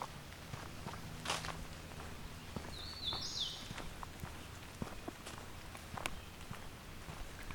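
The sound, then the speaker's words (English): A hooded warbler sings one short, bright whistled phrase at the Fisher Tract at 8:30 a.m. on June 21, 2020, partly masked by steady crunching footsteps. “It seems this year I'm having no trouble finding hooded warblers. And here's yet another one.”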